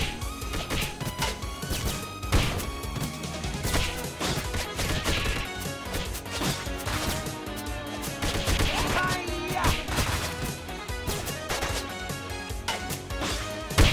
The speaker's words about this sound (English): Oh yeah, look at that, hit it with the explosion. This is so cool, man.